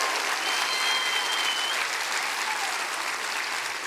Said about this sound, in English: Come on, clap real big for him right now.